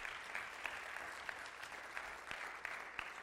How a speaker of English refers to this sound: Let's continue to worship, church. Lift your voices. You can clap for that.